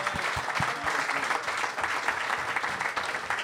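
Steady audience applause from a crowd, a dense continuous patter of many hands clapping at a moderate, even level for a few seconds.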